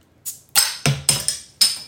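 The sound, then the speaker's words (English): Several beer cans crack open one after another, each sharp metallic pop followed by a short fizzing hiss, fairly loud with no talking. “let's go ahead and crack these and taste”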